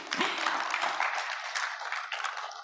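An audience applauds steadily, a dense, crackling wash of many hands clapping at once that holds an even loudness for a few seconds, with no speech over it.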